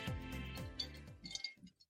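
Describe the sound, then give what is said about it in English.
Ice cubes clink against a wine glass of rosé as it's swirled, a few light, bright taps over about two seconds, then it falls quiet. “I'm trying to see if you can like hear my ice cubes. I can hear it. You've got ice cubes in your rosé.”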